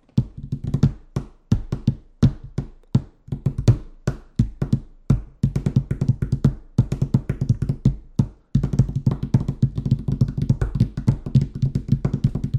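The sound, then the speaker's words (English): Hands drum on a wooden desk, loud hollow thumps and slaps in a loose rhythm that builds into a fast, steady, relentless blast beat for the second half, with no voices. “Well, ladies and gentlemen, you want to hear me bang on my desk?”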